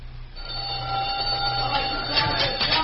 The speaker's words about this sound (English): Inside, just back of the laundry. The gong will sound off any minute. The men will be crowding for supper.